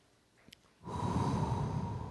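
An audience doing collective deep breathing exhales together in one long, loud whoosh of breath that starts suddenly after a brief quiet moment and holds steady, broad and airy, with no talking.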